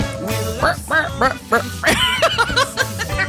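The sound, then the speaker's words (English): Nasal, cartoonish duck quacks, an imitation made by musical instruments rather than a real bird, burst out in a quick, uneven run of about a dozen honks, fairly loud with no talking over them. “If I were to say that the instruments sound like cartoon ducks, but you're right.”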